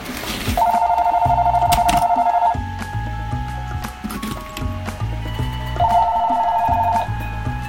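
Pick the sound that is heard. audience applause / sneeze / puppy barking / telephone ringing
telephone ringing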